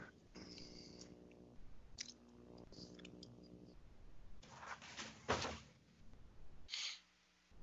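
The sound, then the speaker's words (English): Cats make noise, with a steady, rumbling, purr-like tone over the first few seconds, then scattered rustles and soft knocks. No one speaks. “Sorry, the cats are making noise, so yeah, they're doing that right now.”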